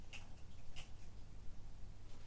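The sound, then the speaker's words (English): A ferret crunching on dry cat biscuits: a few soft, sharp crunches spaced unevenly over a low, steady hum, with no talking. “So it makes sense that I would have a little ferret in the background of recordings crunching away on these little cat biscuits.”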